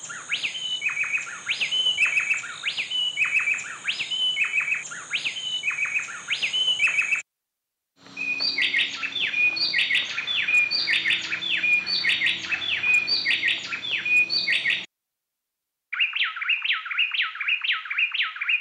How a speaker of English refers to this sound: Dr. Nigel Mann recorded these two bay wrens doing a little call and response.